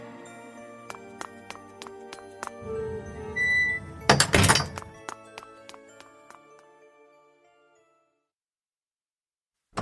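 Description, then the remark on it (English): A side door opens and shuts with a low scrape and a muffled thunk, surrounded by tinkling, chiming tones and small clicks that ring on and fade into silence. No one speaks. “I'll have to sneak out the side door.”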